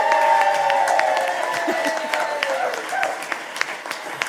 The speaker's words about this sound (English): A huge round of applause for all of our debaters tonight.